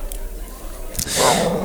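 A boxer dog gives a short, rough growl, fairly loud, lasting about half a second right after a brief sharp knock, with quiet room noise before it.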